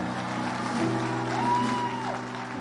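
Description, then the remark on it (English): An audience claps hands together after a man calls his wife beautiful, a dense, steady wash of applause that holds at an even level throughout, with faint sustained musical tones humming underneath. “So he has called his wife beautiful, you need to clap hands.”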